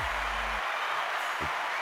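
A dense, steady wash of applause, many hands clapping at once into an even hiss that holds at a constant level for the whole stretch, with a brief low hum at the start.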